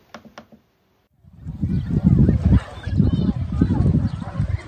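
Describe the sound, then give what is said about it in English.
Canada geese feeding at Horseshoe Lake honk and chatter in a dense, continuous jumble, fairly loud, starting after a couple of brief sharp sounds and a short pause, on a grey, breezy day. “Now at Horseshoe Lake, there's Canada geese doing their luncheon, early luncheon.”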